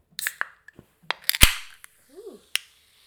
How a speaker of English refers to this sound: Okay, ASMR moment. I'm going to open my La Croix. Ooh.